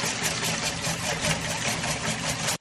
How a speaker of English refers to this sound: I'm making noise. I'm being bad. What are you why are you whipping cream?